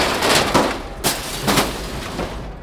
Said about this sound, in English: And something large falling over, resulting in a lot of crashing and banging sounds.